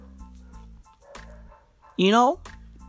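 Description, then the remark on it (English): A dog gives one loud, sharp bark that slides down in pitch, after a stretch of quieter background sounds and a low steady hum. “Like, what are these dogs talking about?”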